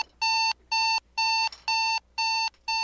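An alarm clock beeps in a steady, repeating pattern, six loud electronic tones evenly spaced with short gaps, bright and harsh, with no voices.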